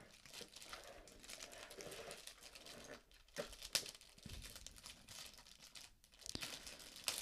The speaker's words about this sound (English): He's struggling so hard to open the damn keyboard right now. You don't have scissors, so it's not fun.